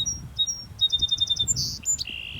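A bird calls with a quick run of high, clear whistled notes, then finishes on a brief buzzy trill, all over a soft low outdoor rumble.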